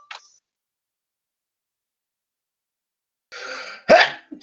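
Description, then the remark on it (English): A single sneeze, fairly loud: a short breathy build-up, then a sharp explosive burst, followed by a faint breath. No one is talking. “Bless you.”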